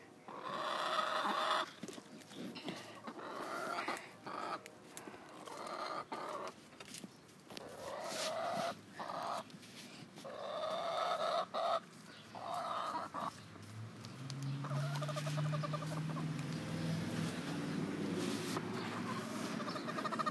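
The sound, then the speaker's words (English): Six chickens cluck and squawk in a busy, overlapping, continuous chorus, with short bursts of calls; near the end a low engine-like hum rises underneath. “That's my chicken, if you're wondering. Well, my chickens, 6 of them.”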